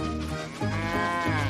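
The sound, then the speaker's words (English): A cow lets out a long, low moo, loud, the call swelling partway through and holding steady to the end, with no voices around it. “Moo, came the reply.”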